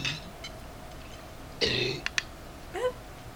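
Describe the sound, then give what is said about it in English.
A dog gags and retches on a bone in short, rough bursts: a harsh hacking heave, two sharp clicks, then a final wet, rising cough-like gulp, with no talking. “Oh, he's just yakking on a bone.”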